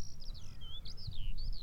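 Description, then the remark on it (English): A skylark sings in flight above, a continuous run of high, warbling, rapidly shifting notes, fairly faint, over a low rumble of wind or background noise; the bird descends lower and lower toward the ground as it sings. “SKYLARK SONG”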